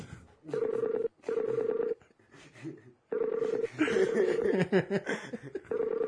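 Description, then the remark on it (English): An outgoing phone call rings on the line, steady tone bursts repeating in quick pairs with short gaps, while faint chuckling and murmured voices come in between and over the later rings. “We're currently calling. Get the phone!”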